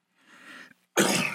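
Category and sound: human body sound, cough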